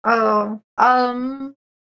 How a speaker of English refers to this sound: see what she's been up to after she finishes yawning.